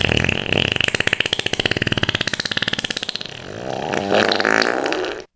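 A long, loud, rippling fart sound effect with a rapid buzzing flutter that slows and changes pitch before ending abruptly, heard alone with no talking.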